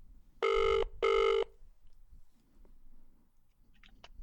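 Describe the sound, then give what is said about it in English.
Two loud, steady electronic ringing bursts, each about a second long with a short gap between, like a phone's outgoing ring tone, followed by faint low rustling and a couple of tiny clicks. “Ring is the segment where we get our phone and we call someone random from the Methodist Church”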